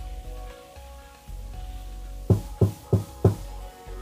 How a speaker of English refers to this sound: Just waiting on that knock on the door.